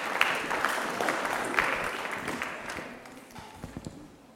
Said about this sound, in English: And we said we give the winning table a round of applause, even though you didn't get them all right. So go and go for it.